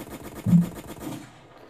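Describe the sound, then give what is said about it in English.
A rapid burst of gunfire, shots rattling off in quick succession like an automatic weapon, fairly loud, then trailing away after about a second with no voices. “How you gonna give up the gunshots and then go to the peace and love?”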